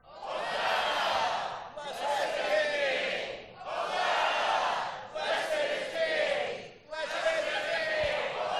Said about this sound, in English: So here we are. It's Palm Sunday here at Hope Des Moines, and the shouts of the people are...